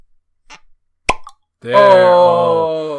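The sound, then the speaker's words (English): A cork pulls free of a Jura whisky bottle with one short, sharp pop as its seal is broken, preceded by a faint rustle. Moments later a voice starts up with a sustained, drawn-out utterance. “I'm breaking the seal. If I can. If I can't break this seal, the podcast is off.”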